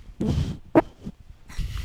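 A fart blown into a microphone: low, rumbling sputters with a brief sharper pop in the middle, then another low burst at the end, with no talking.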